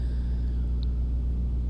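A steady, deep diesel rumble of trucks idling in a truck stop parking lot, waiting for another truck to get out of their way; a constant low drone with a faint engine hum layered on top and no voices.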